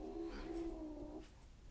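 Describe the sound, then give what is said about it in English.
A cat lets out a low, drawn-out yowl lasting over a second, faint, during a fight between cats. No one speaks. “My cats are fighting.”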